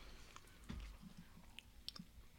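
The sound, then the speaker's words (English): People chewing food quietly, with soft, scattered mouth clicks and smacks; otherwise hushed, and nobody speaks. “Silence because everybody's chewing.”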